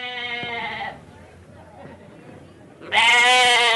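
A brown goat at the front of a church during a village's annual fiesta in Spain bleats loudly twice, one wavering call at the start and a second, louder one near the end, with a short stretch of low background noise between them.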